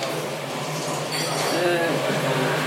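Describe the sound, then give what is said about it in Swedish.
Dishes being washed at Hotell Kobalthof, with scattered clinks of crockery and a steady wash of running water and kitchen noise; a short burst of brighter clattering rises midway, and muffled voices murmur underneath. “De diskar här på Hotell Kobalthof.”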